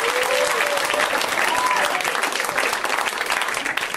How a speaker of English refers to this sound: This is called …, and you should pick this up, and also right now you should clap for Mr. Mike Lawrence, guys. Give it up for Mike! Come on! Let him hear it!